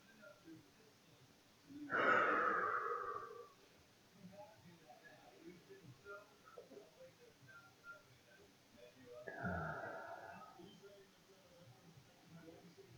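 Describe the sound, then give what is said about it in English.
Two drawn-out, voiced yawns, several seconds apart; the first is longer and louder, the second shorter, with faint breathing in the quiet between them. “And I think that's why when I yawn and I say I'm coming back, I yawn again because it's telling me to just let it out, to keep yawning.”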